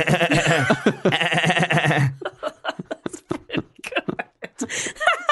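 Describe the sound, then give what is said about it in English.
A person imitates a baby goat with a loud, quavering, nasal bleat lasting about two seconds, then breaks into conversational talking. “Is there some sort of baby goat inside the nest?”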